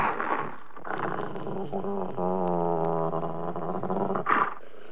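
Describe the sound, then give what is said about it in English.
A female fox growls low and menacingly, a sustained rumbling snarl lasting a few seconds, rising into a sharper snarl near the end, with no voices present. “She bared her teeth in a low, threatening growl.”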